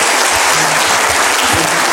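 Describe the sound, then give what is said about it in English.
Steady audience applause welcoming a guest Bible teacher from Oregon at a church service, a dense wash of many hands clapping at once, loud and continuous from start to finish with no voices standing out. “So let's give him a big hand of applause and appreciation.”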